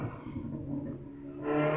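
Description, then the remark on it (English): A street racing car's engine rumbles loudly, then swells into a sharper, louder rev near the end as it zips past. No one speaks. “I thought because of that awesome street racer that just zipped by.”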